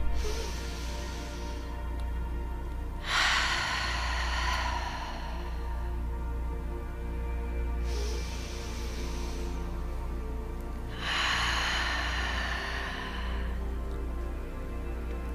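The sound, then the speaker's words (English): Slow, deep breaths drawn in and pushed out as a calming breathing exercise, four long airy whooshes spaced a few seconds apart over a low steady hum, with no talking. “Let's breathe in.”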